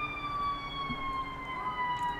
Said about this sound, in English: Because he likes to howl with the ambulance.